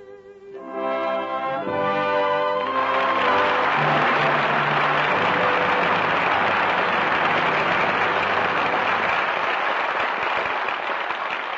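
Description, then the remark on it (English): Loud, sustained audience applause swells quickly and holds steady as a dense wash of clapping, following a brief stretch of tonal music at the start, calling back the five stars of the night's performances: Walter Pidgeon, Donald Crisp, Maureen O'Hara, Roddy McDowell and Sarah Allgood. No one speaks. “applause calls back five stars, who gave five brilliant performances tonight.”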